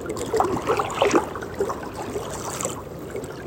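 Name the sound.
lake water lapping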